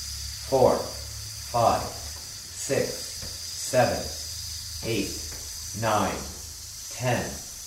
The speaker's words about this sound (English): So take a deep, silent breath in and hiss. 1, 2, keep it strong.